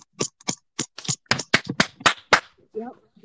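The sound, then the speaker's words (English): A quick run of about ten sharp, crisp hand claps, uneven at first and then quickening, fairly loud, trailing off into a short murmur of voice. “Let's clap it up.”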